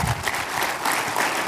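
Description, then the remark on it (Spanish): An audience bursts into steady, dense applause given to the Lord, many hands clapping together at an even loudness throughout the short stretch, with no voices standing out. “Si le puedes dar ese aplauso, va a ser lo grande al Señor.”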